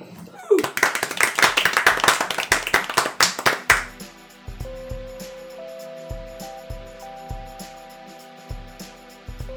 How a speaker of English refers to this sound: I think all that remains is to end that with a round of applause.